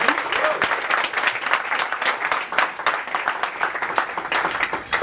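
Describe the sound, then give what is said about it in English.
A crowd applauds steadily for several seconds after an audience member's question, a dense, even patter of many hands clapping at once, fairly loud and sustained with no one speaking over it. “Cool, let's clap it up for that question.”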